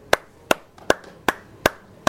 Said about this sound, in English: A resounding clatter of applause.